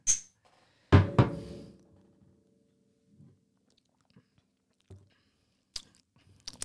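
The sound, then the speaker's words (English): Two sharp glass clinks ring out, followed by quiet gulping and small wet mouth noises as a shot of Fireball cinnamon whisky is downed, with a few soft clicks near the end and no talking. “So, first off, we're going to start with a shot”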